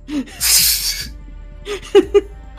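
A coughing fit: a long, harsh, breathy rasp followed by a few short, sharp coughs in quick succession, fairly loud, with no talking.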